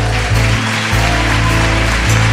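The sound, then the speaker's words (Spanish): A church audience claps together for the Lord in a dense, steady patter like heavy rain, while low sustained musical tones hum underneath throughout. “Y le damos unas palmas al Señor.”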